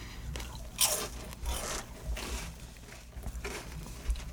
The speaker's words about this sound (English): I'm like kind of self-conscious that I'm gonna chew so loud and that the mic is gonna pick up on my chewing.